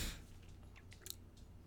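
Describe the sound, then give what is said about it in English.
A dog outside, its claws clicking faintly on a hard floor, a short run of light, irregular taps over a low steady hum, with no one talking. “I hear my dog outside. You hear the clicking? The feet?”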